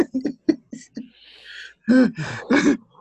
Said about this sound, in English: Got me coughing into my microphone. Damn it.